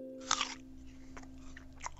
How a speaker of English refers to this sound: You're listening to the eating of a Macintosh apple.